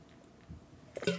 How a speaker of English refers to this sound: Okay, quick sip of water. So I'm talking a lot. I've noticed since my wisdom teeth were pulled out of my skull that my mouth gets very dry very fast, so been doing that.